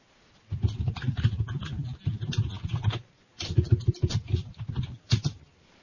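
Rapid, clattering keystrokes on a computer keyboard come in several dense bursts separated by short pauses, fairly loud, with no one talking.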